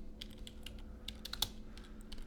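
Rapid clicks of typing on a computer keyboard, a quick irregular run of light keystrokes over a low steady hum, with no one speaking.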